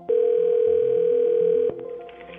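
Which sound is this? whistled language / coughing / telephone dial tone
telephone dial tone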